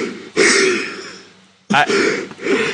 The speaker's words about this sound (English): coughing, I think, his entire lung. He's not done.